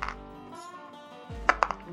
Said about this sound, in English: Okay, Flint, give me a climb roll with the bonus dice.